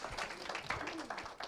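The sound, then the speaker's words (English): A church crowd claps their hands for a man's 17 years in church, a steady, dense patter of overlapping claps, moderately loud, with a few voices calling out beneath the applause. “Let's give him a hand clap for 17 years.”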